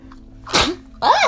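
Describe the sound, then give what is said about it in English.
A single sharp sneeze bursts out loudly after a quiet moment, followed immediately by a brief voiced sound as someone starts to talk. “I sneeze. I'm so sorry.”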